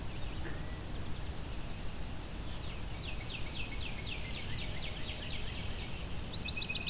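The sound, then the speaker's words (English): Several swamp sparrows sing overlapping slow musical trills, steady runs of repeated notes from more than one bird, over a constant low outdoor rumble, at Fletcher Creek Ecological Preserve. “We're hearing lots of swamp sparrows.”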